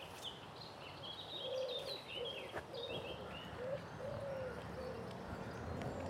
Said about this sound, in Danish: Her er der alt til den her fugl. Kan du høre?